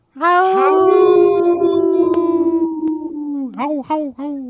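A single wolf lets out one long, loud, steady howl that slowly sinks in pitch, then breaks into a few short rising yips and whimpers at the end.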